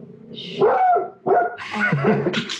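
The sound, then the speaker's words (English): A dog barks and yips in a short excited burst of several harsh, overlapping calls, loud and insistent with brief gaps between them. “The dog's picking up on it.”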